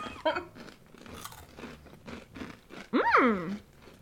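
Crisp, dry crunching of Thai rice noodle snacks from Trader Joe's, made with rice noodles, shallots and cashews, chewed in a steady series of brittle bites, with a short, loud high-pitched vocal squeal breaking in near the end.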